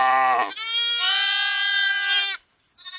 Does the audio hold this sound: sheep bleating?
yes